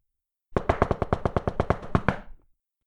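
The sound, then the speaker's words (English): A rapid, evenly spaced run of about a dozen sharp, excited knocks on the wide, arched French doors of a five-story brick house, firm and brisk, lasting under two seconds with no voices around it. “Jake's mom gave the door several excited knocks.”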